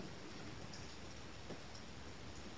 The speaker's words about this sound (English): What's the sound of the rain about? This moment's just rising, passing.